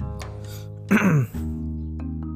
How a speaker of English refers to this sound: Sorry, I had to cough.